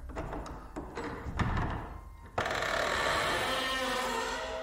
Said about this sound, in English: There was this black door. No writing on it, no numbers, no doorknob, just a plain black rectangle of metal. We hovered around it, and then after a moment there was a sound of metal latch and the squeal of hinges in desperate need of WD-40.